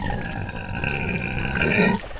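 A pig named Hazel on a farm grunts while her back is scratched, in one long, rough, droning stretch that holds steady for about two seconds before cutting off, with no one talking.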